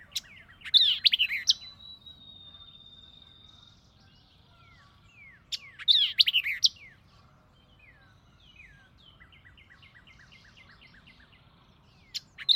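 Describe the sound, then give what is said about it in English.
Vireo song: bright, rapid bursts of chirping notes repeat every few seconds, linked by a long thin whistle and softer trailing phrases, with no voices and a quiet, steady background. “namely the red-eyed vireo, the white-eyed vireo, the warbling vireo, the yellow-throated vireo, and the solitary vireo.”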